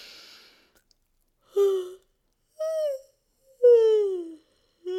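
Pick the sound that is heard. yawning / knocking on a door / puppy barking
yawning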